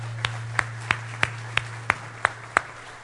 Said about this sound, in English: Can we give the Lord a big hand this morning?